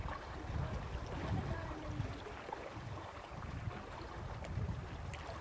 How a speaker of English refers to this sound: There's just the experience of the water. And you may hear some voices in the background of some people having fun.